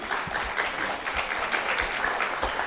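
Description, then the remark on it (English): An audience applauds steadily, a dense wash of many hands clapping at an even, sustained loudness with no voices standing out. “But the thing that, yeah, you can clap.”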